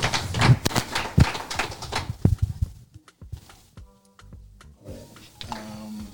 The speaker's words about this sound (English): So can everybody just give her a round of applause again? That was amazing.